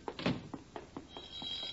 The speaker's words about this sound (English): Now, the phone. I'll get it,